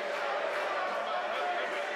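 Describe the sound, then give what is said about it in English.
A big crowd chatters at a sold-out concert venue in Shoreditch while waiting for the band to come on: a dense, steady wash of many overlapping voices blending into a continuous murmur with no single words standing out, holding an even loudness throughout. “Big crowd, not been here for years.”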